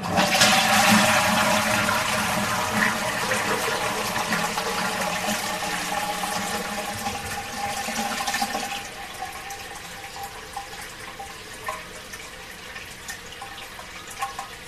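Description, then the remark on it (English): A toilet flushes loudly, a strong rushing whoosh of water that gradually tapers into a quieter refilling trickle and gurgle, with no voices present. “Ha ha, toilet flush, please.”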